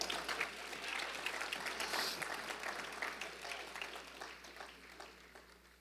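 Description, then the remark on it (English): An audience applauds steadily for several seconds, a dense crackle of many hands clapping that holds fairly even before tapering off slightly toward the end. No one speaks over it. “You should have clapped right there.”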